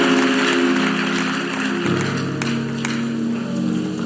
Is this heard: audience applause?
yes